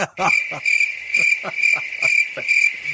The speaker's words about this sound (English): I know that sounded like crickets, locusts. Wait, no, cicadas. Cicadas. Whatever.